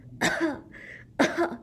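Two deliberate, exaggerated coughs from a girl pretending to be sick, each a short harsh burst about a second apart, fairly loud with no talking.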